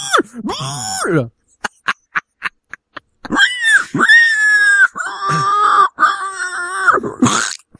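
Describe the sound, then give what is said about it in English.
Someone imitates a pig squealing: a high, wavering squeal, a quick series of short clipped bursts, then several long, strained, loud squeals with grunting edges. “Squeal, pig, squeal.”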